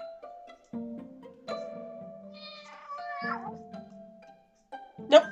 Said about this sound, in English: Nope. That wasn't him and he didn't care. Nope. That sounds like a person doing a cat noise. Okay, only one more cat noise.